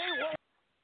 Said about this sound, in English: Every single one of those screams sounds like a cat dying.